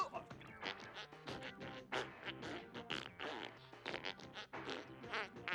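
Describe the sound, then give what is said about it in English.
A squeaky DJ Rubber Ducky toy honks out a rapid, continuous string of loud, farting squawks, one sputtering burst tumbling into the next without pause. “Is it farting?”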